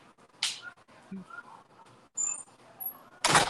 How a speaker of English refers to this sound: Give me one second. Let me shut this door.